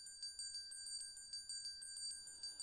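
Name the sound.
bell ringing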